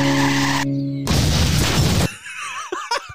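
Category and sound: vehicle, car skidding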